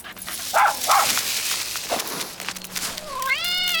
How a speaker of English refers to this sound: Oh, no, not Buster again. Listen here, you naughty dog. Leave my cat alone.